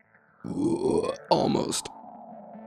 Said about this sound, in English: I need to learn how to burp while I talk.